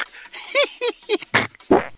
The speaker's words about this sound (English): Yeah, you might have noticed that laughing a lot can also push excess air right out your other end, which is why people sometimes fart.